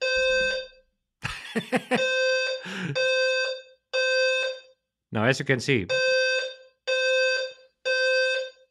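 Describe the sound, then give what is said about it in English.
A loud building fire alarm being tested sounds in repeated harsh electronic pulses, roughly one per second, while a man talks over it. “so they're testing the fire alarm in the building.”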